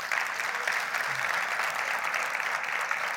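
A church audience claps steadily for Jesus, dense overlapping applause holding an even, moderate loudness throughout without voices breaking through.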